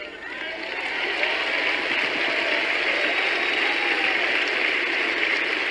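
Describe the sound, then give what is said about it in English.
An audience claps steadily, a dense wash of many hands that swells over the first second and then holds at an even level throughout, with no voices over it. “I wasn't expecting all the clapping.”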